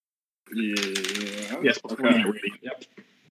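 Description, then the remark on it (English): Dice clatter and rattle across a tabletop in a quick burst of clicks, fairly loud, with a voice talking over the start of the rolling, as a player rolls two eight-sided dice for unarmed strike damage in a tabletop game. “Not put away those dice.”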